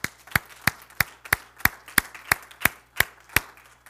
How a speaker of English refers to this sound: And so can we give the Lord a great hand clap? First Apostolic Church, these are things that you do.